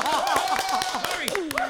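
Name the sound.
clapping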